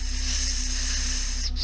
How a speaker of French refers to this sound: Plus tard, dans la soirée, j'étais assis à la table, dans le salon, sur une chaise, je vérifiais mes courriels quand j'ai entendu un petit sifflement dans le couloir.